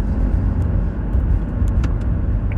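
A dirt bike engine roars with a steady, low, gritty rumble, loud throughout, its pitch and volume holding fairly even without a clear rise or fade. No voices are heard.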